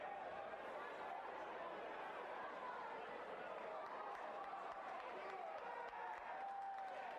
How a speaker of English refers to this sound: Hey, you can hear the crowd clapping too.